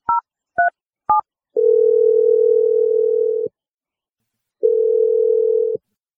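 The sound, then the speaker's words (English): Three quick touch-tone beeps dial a phone number for an Awkward Tuesday phone call, then a steady ringback tone purrs twice with a pause between, clear, with no voices. “We're going to call boring old Josh and let you make your awkward call.”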